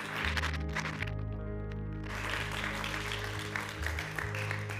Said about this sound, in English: Come on, let's give her a round of applause this morning.